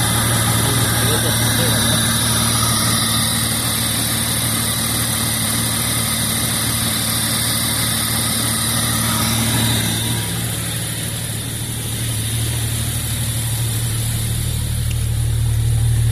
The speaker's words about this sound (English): So tick is gone. Engine sounds great. It's having a bit of a starting issue.